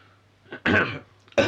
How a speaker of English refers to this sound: Presumably, at this point, when they were staring at this blank space on this table they've just created, Maximian started clearing his throat a few times.